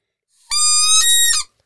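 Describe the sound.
A person imitates a wood duck call with their mouth: one loud, drawn-out, high, reedy squeal lasting about a second, with a couple of slight catches near the end, and no talking.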